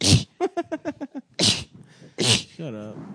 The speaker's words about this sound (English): You know that's how I sneeze.